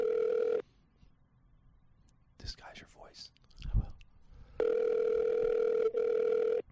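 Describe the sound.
A phone call to a farm rings out over a speakerphone: a loud, steady electronic ringback tone, a pause filled with a quiet whisper, then the long tone repeats.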